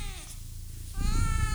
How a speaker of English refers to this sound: So I'm just gonna put in some nice meows here. There we go. Yeah, some nice meows.